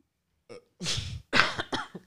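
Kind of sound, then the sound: human body sound, cough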